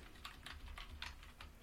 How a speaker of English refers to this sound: I hear your keyboard. Are you writing a review for us right now? That's right.